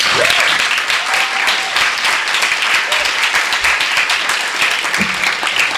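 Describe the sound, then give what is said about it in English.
Sustained audience applause for the readers at a reading at Skylight, a dense wash of many hands clapping steadily at a loud, even level, with a few faint voices and cheers mixed in. “All right, one last round of applause for all of our readers in Skylight.”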